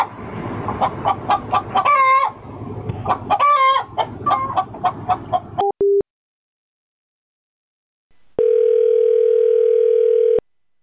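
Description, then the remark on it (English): A chicken kept for food clucks in a hotel bathroom in quick bursts with a couple of rising squawks for several seconds, then a short beep, silence, and a steady telephone dial tone. “Well, a chicken's not a... It's flightless.”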